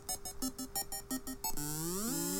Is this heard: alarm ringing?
yes